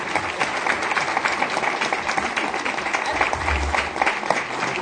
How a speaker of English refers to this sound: A big round of applause to our panelists. Thank you so much. And a big round of applause for all of you.